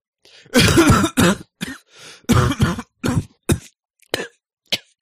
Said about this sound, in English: Hey, you want me to fake cough into the mic to make it sound more compelling? Yeah, please.